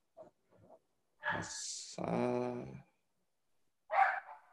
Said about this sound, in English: Wait, can you hear like barking?